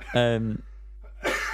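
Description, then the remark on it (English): A short voiced sound is followed, after a brief pause, by a single harsh, noisy cough burst that is fairly loud and lasts only a moment. “Is this what this cough's from?”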